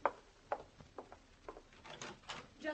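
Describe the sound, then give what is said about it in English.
A door being opened, heard as a string of soft knocks, clicks and rattling handle noises spread over a few seconds, fairly quiet, with no one speaking. “he's a good man to leave on the door, isn't he, Danny? Let's everybody... Open it.”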